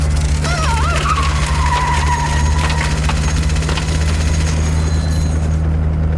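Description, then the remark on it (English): A car engine hums steadily while the tires let out a sharp, wavering screech that slides downward and fades over a couple of seconds as the car backs up. “Had to take the car back a little.”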